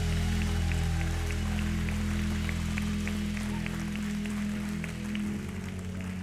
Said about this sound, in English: Can you give Jesus a big hand clap this morning?